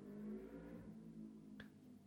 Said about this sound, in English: That was a massive motorbike going past my house there, but it was very apt there, kind of... stopped after your thing there.